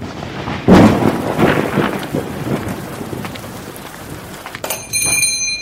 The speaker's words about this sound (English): Hello, come on in out of the rain. It's been a monsoon out there that just won't seem to let up.